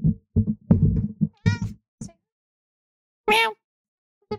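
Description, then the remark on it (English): Short meows over a few scattered low thumps, then a louder, drawn-out meow from a person imitating a cat, followed by silence. “the louder meow was me.”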